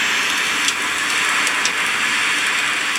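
A steady, dense wash of hissing noise from a sleep app mixing rain, ocean waves, a campfire and brown noise, with faint crackly ticks scattered through it, continuous, even and pretty loud, without any voices.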